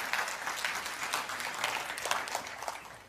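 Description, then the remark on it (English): An audience breaks into loud, sustained applause for the Lord, many hands clapping together in a dense, crackling wash that holds steady for several seconds with no voices over it. “Come on, give the Lord a loud hand clap.”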